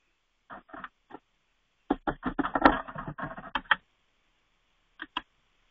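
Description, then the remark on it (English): A phone charger being plugged into a phone at 3% battery: a few sharp plastic clicks, then a quick rattling flurry of clicks and taps, and finally two more isolated clicks, with no voices. “my phone is at 3%, and I'm plugging it in. It's plugged in right now with my better charger, so hopefully we don't die.”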